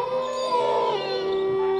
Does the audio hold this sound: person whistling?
no